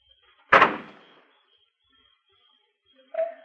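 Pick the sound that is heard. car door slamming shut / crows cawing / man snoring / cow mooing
car door slamming shut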